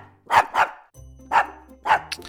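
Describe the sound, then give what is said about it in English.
A dog named Luna barks four times to rate an animal news story: a quick double bark, then two single barks about half a second apart. No one is talking. “So, Luna, on a scale of 1 to 5, how many doggy treats do you give this owl of a story?”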